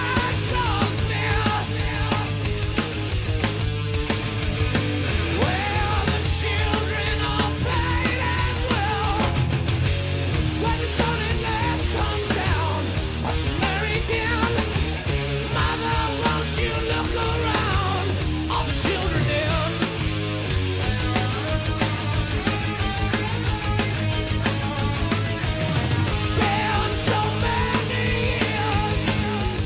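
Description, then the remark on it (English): A heavy metal song played from a record plays at full, steady loudness: dense distorted guitars and pounding drums with no break, carrying on throughout. “So moving on, let's play a fourth track.”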